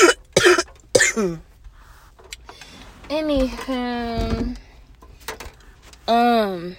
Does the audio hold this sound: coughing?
yes